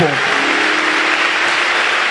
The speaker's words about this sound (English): Oh, your clapping is not good.